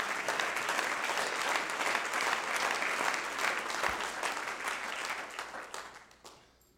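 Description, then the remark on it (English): A church audience claps their hands to the Lord in sustained, dense applause for several seconds, filling the room before it tapers off and fades near the end. “Would you clap your hands unto the Lord?”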